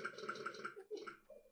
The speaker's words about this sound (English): earlier she was eating cake, and when you eat cake in this game, it makes a disgusting belch noise.